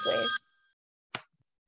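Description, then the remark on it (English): A short burst of an electronic phone ring with bright, steady tones that cut off abruptly and fade, followed by a couple of brief handling bumps as the person tries to answer the phone while wearing a headphone. “I'm trying to answer my phone with my headphone on my ear and I just landed into the headphone.”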